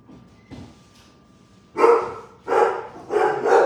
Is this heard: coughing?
no